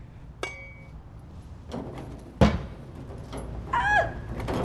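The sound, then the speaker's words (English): A very sharp thrown tomahawk strikes a wooden target outdoors during a Cajun tomahawk-throwing game, with one loud, heavy thunk, preceded by a few lighter knocks and clicks, with a brief higher tonal sound trailing after the impact. “takes me outside to play one of his favorite Cajun games, which involves throwing some very sharp tomahawks.”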